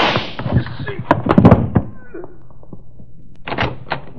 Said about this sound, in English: Whoever fired those shots couldn't have missed any.